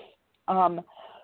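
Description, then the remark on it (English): A single short, throaty cough from a congested person bursts out loud, lasting under half a second, with quieter breathy vocal sounds just before and after. “excuse my cough there. I'm a little congested today.”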